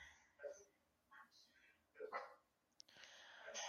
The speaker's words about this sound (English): Charlie is barking at the horses.